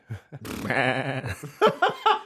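A single long, quavering goat bleat, loud, wavers for about a second, followed by a few short, sharp vocal bursts; Jim Brewer's goat.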